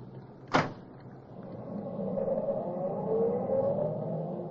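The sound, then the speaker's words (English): A single solid thump of a car door shutting, followed by an engine starting to pull away and rising steadily in pitch as the car drives off, with no talking. “Here's the car, I think.”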